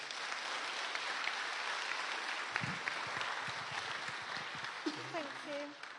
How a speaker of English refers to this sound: Great, can we give these guys a round of applause?